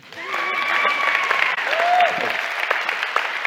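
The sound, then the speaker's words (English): An audience applauds steadily for a few seconds for people called up to share their story, a dense wash of clapping with cheering voices and a few high whoops rising above it. “Well, you can clap for them.”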